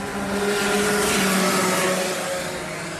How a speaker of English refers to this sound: Oh, Christ, she's got a problem. What is it? She looks like she's slowing down. Just keep going, keep going. She's obviously got a problem with her engine or something.